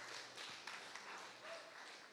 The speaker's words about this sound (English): Oh, man, can we give the worship band a round of applause, please?